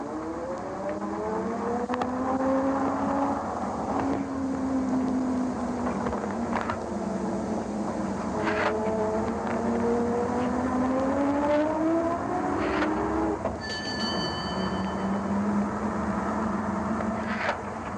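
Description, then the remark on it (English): A steady engine drone heard from aboard a red London double-decker bus riding east to the old city, its pitch rising and falling through gear changes, with rattles, a short bell-like ding partway through, and no voices. “Sit upstairs or down on a red London bus and ride east to the old city.”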